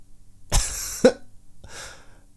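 A harsh, hacking cough bursts out, with a second sharp cough right after, then a fainter raspy, strained breath of someone suffocating trails off. No one speaks.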